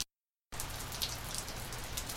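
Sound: heavy rain pouring down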